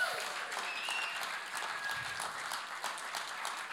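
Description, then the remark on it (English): A church audience claps steadily for a team, a dense wash of many hands at an even loudness for the whole stretch, with no voices standing out over it. “Can you give these guys a clap?”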